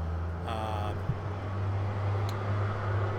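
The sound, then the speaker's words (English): A giant dump truck rumbles past, its deep engine drone holding steady throughout, with a brief higher whine early on and a soft thump partway through. “There's a giant dump truck driving by.”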